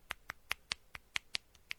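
About nine quick, crisp taps on the glass back of a phone made of half glass, half metal, bright and clicky, spaced roughly evenly with one softer tap near the end. No one speaks.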